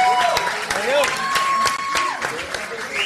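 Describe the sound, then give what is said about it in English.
A crowd breaks into loud, sustained applause for a group of guys, dense clapping mixed with whoops and a few rising whistles, continuing steadily throughout with no single voice standing out. “Everybody, a big applaud for this group of guys.”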